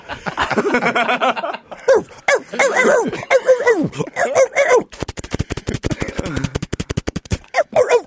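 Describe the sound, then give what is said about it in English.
A person loudly mimics police dogs barking outside a car, with a string of harsh yelps and whimpering howls, followed by a rapid, buzzing, rattling burst of sound. “That's what it sounded like on the outside of my car. Oh, my. Cop, dogs, everything, bro.”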